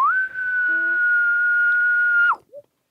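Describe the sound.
A person imitates a far-off elk bugle: a single high, thin whistling tone that swoops up, holds steady for about two seconds, then drops away, followed by a brief faint grunt-like note.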